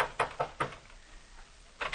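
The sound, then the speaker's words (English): Someone pounds on the copy room door at a newspaper office: three quick heavy thumps, a short pause, then two more blows. The knocks sound fairly soft and muffled, with no voices. “And you pray there's still someone in the copy room as you pound on the door.”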